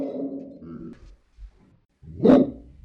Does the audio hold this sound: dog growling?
yes